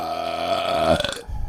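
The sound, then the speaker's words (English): A long, loud, drawn-out burp rumbles for over a second, its pitch wobbling before it trails off into a short breathy tail. “It tasted like 25 questions. Cucumber.”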